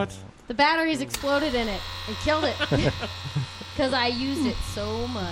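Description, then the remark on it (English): A steady electric buzz, like a shaver running, hums continuously beneath a person talking, low and even in pitch throughout without pausing. “That kind of sounds like somebody using like an electric shaver.”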